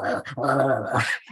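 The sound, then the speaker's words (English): A person imitates the growling of baboons in a movie: one rough, snarling vocal burst of about a second, loud, with a brief dip partway through before it trails off. “And the growling that the baboons do is like, that's got to be just some guy going.”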